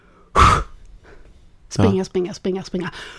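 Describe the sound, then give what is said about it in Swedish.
A voice imitates a man running on a treadmill: one sharp, loud, breathy snort, then after a pause a series of quick, voiced panting huffs in an uneven rhythm. “Han frustar och flåsar så jävla högt så det gick igenom.”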